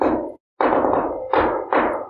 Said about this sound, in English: So he leads you through channel back to the Burgermeister's mirror. You hear him do a special knock.